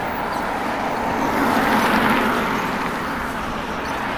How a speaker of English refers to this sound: lots of traffic this morning, more than I expected. Good grief.